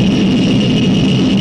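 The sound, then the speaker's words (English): A loud, steady engine roar fills the whole moment, a dense rumbling drone with a hissing edge, from a car running flat out on a world speed record run at Bonneville. “See the Bonneville World Speed Record Run.”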